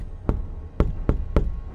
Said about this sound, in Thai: พี่สาวก็ชี้ไปที่กระจกแล้วก็บอกว่าด้านนอกมีเงาอีก 2-3 เงาตรงระเบียงเขาเคาะ